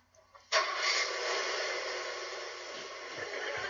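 A car engine, started by a 12-year-old boy at the wheel, starts abruptly after a brief quiet moment and keeps running with a loud, steady, rough roar. No one speaks.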